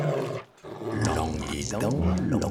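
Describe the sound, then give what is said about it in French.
A voice growls and snarls like a wolf, loud, with rough, throaty rumbles broken by a brief pause before a longer, drawn-out snarl. “À cet instant, arrive un loup.”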